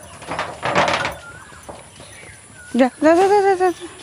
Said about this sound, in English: I need to go and get the cows back into the house. If the mosquitoes bite them, they'll thump around. Yeah. The cows are in the same room as us.